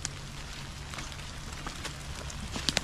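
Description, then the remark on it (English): Heavy rain pours outdoors in a steady, dense hiss, with a few sharper drips and taps standing out near the end. No one speaks. “it's like really raining.”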